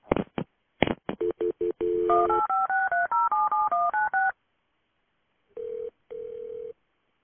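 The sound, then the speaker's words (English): A few sharp clicks, then a quick run of two-tone telephone keypad beeps dialing a number, a short silence, and two longer steady tones as the call connects: a 911 call being transferred to the police. “Okay, hold on for the police. I'm going to transfer you.”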